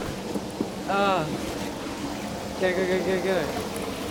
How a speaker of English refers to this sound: Oh, just dropped my camera bag in the river.